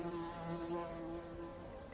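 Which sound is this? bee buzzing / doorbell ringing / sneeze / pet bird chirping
bee buzzing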